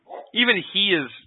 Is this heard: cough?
no